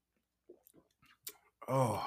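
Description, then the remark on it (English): A few soft, wet swallowing gulps and throat clicks as a person downs a ginger shot poured straight into the back of the throat, followed by a loud, strained vocal exhale like a gasping groan after the drink goes down. “I poured it straight into the back of the throat and swallowed.”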